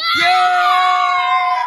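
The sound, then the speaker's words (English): A child, running around with Russell Wilson present, lets out a sustained, high-pitched scream that rings out loud, holding one shrill pitch for nearly two seconds with no talking. “So there's Russell Wilson and one child screaming and running around.”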